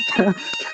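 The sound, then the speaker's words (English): A fire alarm in a room sounds a steady, high-pitched electronic tone throughout, loud, with a brief voice murmuring underneath partway through. “This is the fire alarm in my room. It's really horrible.”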